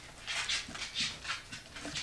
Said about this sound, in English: sorry, I have a dog in the background. I'll show you in a second.